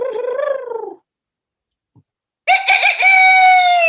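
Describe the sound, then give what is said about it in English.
A human voice mimics a rooster's crow: a short, falling call, a second of silence, then a longer, loud, strained cock-a-doodle-doo. “Said the cock in this garden.”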